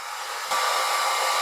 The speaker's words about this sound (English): I'm in the basement and the water heater's like 2 feet away from me.